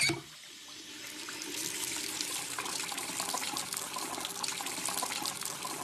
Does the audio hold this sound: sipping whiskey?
no